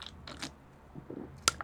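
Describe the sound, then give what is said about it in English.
Quiet beer drinking with a few soft, breathy sips and low gulping swallows, ending in one sharp, bright click like a bottle or glass tapped. No one speaks. “Some beer drinking ASMR.”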